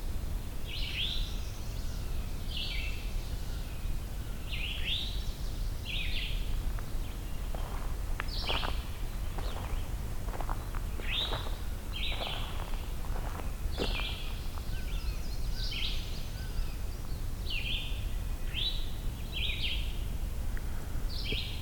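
An eastern towhee gives its call again and again, short bright notes repeated every second or so, clear over a low outdoor rumble. No one speaks.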